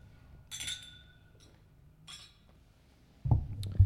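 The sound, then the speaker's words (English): Glasses clink together as men toast before sipping a sweet drink, two bright ringing taps about a second and a half apart, followed by a low thump and shuffling as the drinks are handled, with no talking. “Cheers, gentlemen. Fellas. Cheers.”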